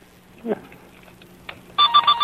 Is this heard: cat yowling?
no